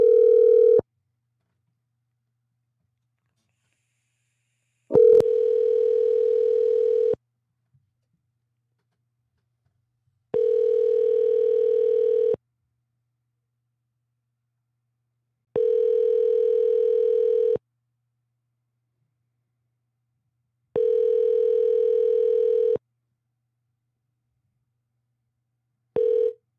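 A telephone ringback tone repeats in steady two-second bursts separated by roughly three-second pauses, five full rings heard through the line with nobody picking up, during a live prank phone call.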